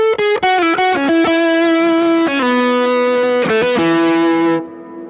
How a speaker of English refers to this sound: And then this, I think, is a Chase Bliss, the reverb thing, too.